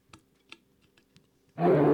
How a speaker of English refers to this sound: That took you so long to find a bear noise while we're talking about bees.